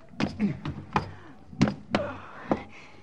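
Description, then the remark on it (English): A rooftop trapdoor with rusty hinges, leading down into a radio room, is pried open, with a series of sharp wooden thuds and clunks at irregular intervals and a few faint creaking groans between them. “And then, flat on our stomachs, we crawled toward the trapdoor and pried open its rusty hinges and lowered ourselves into the radio room.”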